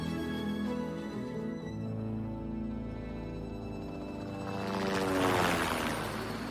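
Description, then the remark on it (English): A helicopter carries a sun bear, Natalie, to be released in the forests of Lahad Datu, a protected rainforest. Its engine drones steadily under a low rotor thrum, growing into a louder rushing whoosh toward the end as it seems to pass by. No voices are heard. “Wong went with Natalie in the helicopter as they flew her to the forests of Lahad Datu, a huge protected rainforest bigger than Singapore.”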